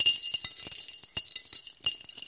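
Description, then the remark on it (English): A burst of coins dropped into a bowl all at once by a group of people, many bright metallic clinks and rattles piling up in quick succession, with a few louder strikes standing out, no voices over it. “can you both put all of your coins in the bowl at once and listen to how it sounds different?”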